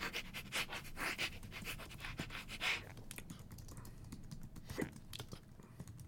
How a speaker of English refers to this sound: Hello, everyone. I recommend every once in a while sniffing your dog. And then I did this.